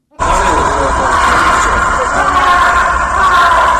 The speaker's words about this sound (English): Hey, he's screaming on every good bounce when it pulls at his butt piercings.